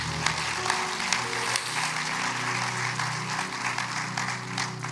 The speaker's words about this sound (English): But I thank God for you all as well, for Word Alive International Outreach Ministry. So go ahead and give yourselves a round of applause.